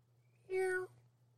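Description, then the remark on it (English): A person imitates a kitten's mew: one short, high, tonal cry lasting under half a second, fairly clear, with a low steady hum underneath and nothing else around it. “They mew more than they meow.”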